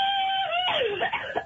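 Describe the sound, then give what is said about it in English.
A loud, high sustained scream that breaks and wavers, trailing into a rough, choppy burst like a cough at the end, heard alone without talk. “that cough at the end, I don't know why. That's like a Robitussin commercial.”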